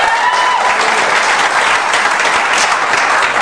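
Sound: audience applause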